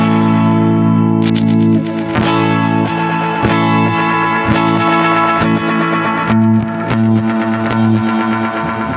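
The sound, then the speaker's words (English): A distorted electric guitar plays steady picked notes drenched in delay and reverb. The effects stay low while notes are played and shoot up as soon as playing stops, the echoes blooming and washing outward in the gaps between strums. No one speaks. “See how when I'm playing, the delay and reverb are low, and as soon as I stop, they shoot up.”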